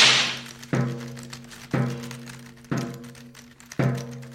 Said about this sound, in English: Now this is the writer's room. Why is that man walking up and down the center aisle with a whip?